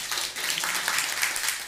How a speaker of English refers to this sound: yep, you can clap if you want.